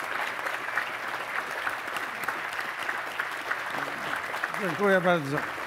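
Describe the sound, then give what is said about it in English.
Steady, dense applause from a large audience at a Reagan Forum for President Reagan's 2024 birthday celebration fills the whole stretch, a continuous crackle of many hands clapping, with a voice rising over it near the end. “I would rather get all that applause at the end, not at the beginning.”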